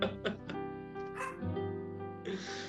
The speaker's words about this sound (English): I think your dog agrees too. Yeah, he timed that almost perfectly, didn't he? That he did. I treat him like a king. I don't know why. I don't even know why he's barking.